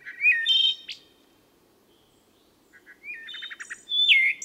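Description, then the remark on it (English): A wood thrush sings two clear, flute-like phrases separated by a brief pause, each ending in a rapid, trilling flourish, heard alone against quiet woodland background. “This is the only bird whose note affects me like music.”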